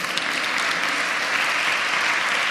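Sustained applause from an audience, a dense, steady wash of many hands clapping at once, fairly loud and close, holding at an even level throughout without voices breaking through.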